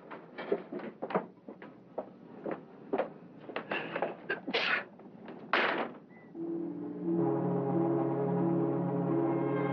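door being shut

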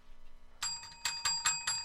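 bell ringing

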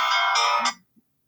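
mobile phone ringtone

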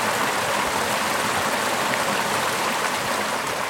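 water flowing

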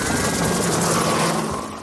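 helicopter flying overhead

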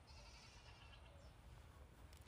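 goats bleating

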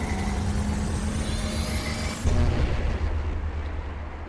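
car starting and driving

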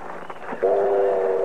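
train pulling into station

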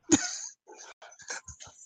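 dog barking

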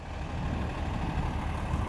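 bus engine idling

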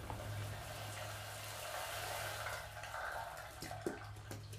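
shower water running

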